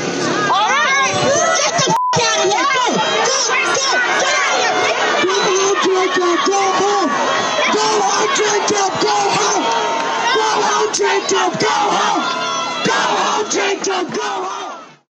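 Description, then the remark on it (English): A large, angry crowd shouts and jeers loudly and continuously, many voices overlapping into a dense, hostile roar that stays at full intensity for the whole stretch, reacting to a man saying he does not want to defund the police. “No, he doesn't want to defund the cops. And the crowd loses it.”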